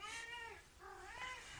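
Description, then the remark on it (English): A cat named Thor, after being thrown, lets out two loud, drawn-out meows in quick succession, the second rising and wavering like a yowl, with no talking. “Now he's yelling at him.”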